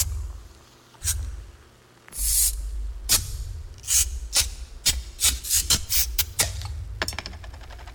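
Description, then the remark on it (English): Bud Light beer bottles being opened one after another in a 30-second radio commercial: crisp cap pops and short fizzy hisses, sparse at first, then coming in a quick cluster, over a low steady rumble with no talking. “But this is a 30-second commercial, so here's some sound effects of bottles opening.”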